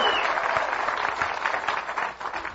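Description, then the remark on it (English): A crowd claps and cheers loudly and continuously as a practice round of applause, a dense wash of applause with a brief high whoop at the start and scattered shouts throughout. “Let's practice real quick. We got to do better than golf clapping.”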